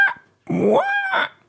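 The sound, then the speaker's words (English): A person imitates a rooster's crow: a short throaty burst, then a strained note that rises and holds for nearly a second before breaking off, fairly loud. “I'd say that sounds a bit like an ill cockerel.”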